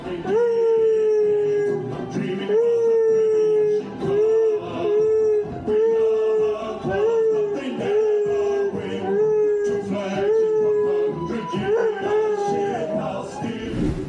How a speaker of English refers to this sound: of her dog Monty singing along to the theme song of our podcast as she was playing it, which is pretty fun.